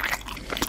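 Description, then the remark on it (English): A brief, moist chewing sound effect, with wet squishy munching and soft smacking bursts over under a second, no voices. “Chewing the fat with Justin Dee.”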